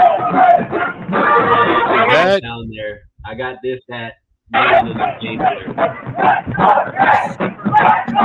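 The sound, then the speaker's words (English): A loud tailgate crowd, with the band and cheerleaders out there and a thunderstorm rolling in, cheers and yells, many voices shouting together in a dense, sustained roar. It breaks off briefly midway, then the whooping picks back up just as strongly. “I think the sound might be a little intense for some of the people that are gonna be listening to on it, but you know what though?”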